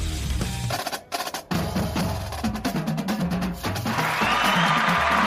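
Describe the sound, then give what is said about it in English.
An applause sound effect: a burst of crowd applause and cheering swells up, a dense steady roar of clapping that grows louder toward the end, with a musical bed playing underneath. “Got the applause.”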